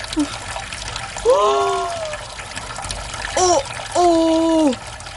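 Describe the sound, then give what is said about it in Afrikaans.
Water runs steadily from a tap into a kitchen washbasin, a continuous splashing trickle, while a voice shouts out loudly a few times over it. “My voet sit vas en die water is besig om in die wasbak in te loop.”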